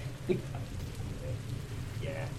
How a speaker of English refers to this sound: A downpour, but stay here.